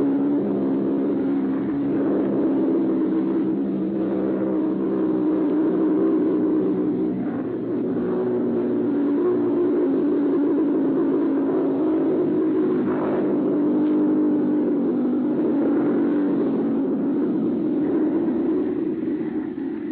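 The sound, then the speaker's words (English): The pulsejet engine of a robot bomb in flight, recorded in southern England, drones loudly and steadily, a harsh low buzzing rumble that holds constant for the whole stretch with no cutoff, heard on an old, muffled recording. “listeners heard the actual sound of a robot bomb in flight.”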